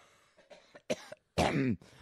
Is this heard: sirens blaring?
no